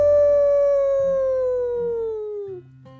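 A single long animal howl in the distance in the woods, steady at first and then sliding slowly downward in pitch before breaking off, fairly loud over a low rumbling background.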